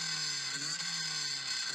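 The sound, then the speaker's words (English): A voice imitates a revving chainsaw engine, a steady, buzzy, high-pitched drone with a slight waver in pitch, sustained loudly for about two seconds. “That was a chainsaw.”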